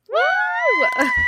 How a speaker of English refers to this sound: Yes. Oh my God. I can't scream too loud or this will like blow the speakers on y'all's ears.